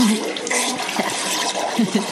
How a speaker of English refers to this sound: Hey, that sounds in pretty nasty. How about a courtesy flush over there? That's when I learned what a courtesy flush was.